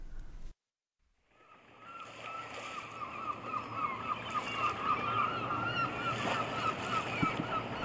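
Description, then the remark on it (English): After a brief pause, a busy harbour soundscape rises at Waterloo Quay in Aberdeen on a sunny day: overlapping gull cries over a steady wash of water and a low rumble of boats, with no talking, as forklifts and cranes load goods onto standby vessels. “I take a walk down to Waterloo Quay in Aberdeen.”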